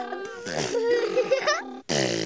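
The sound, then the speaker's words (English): A child vocally imitates a car muffler during a children's driving song, with a loud, buzzing, sputtering voiced sound, wavering in pitch, breaking off briefly before a second burst. “What sound does a car muffler make?”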